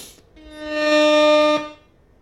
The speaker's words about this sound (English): Sorry, that was accidental. I don't know what's up with the soundboard today, y'all. We're having a little bit of technical difficulties. The rap air horn isn't as sharp and as clear as it should be, but that's the maybe you have to keep hitting it.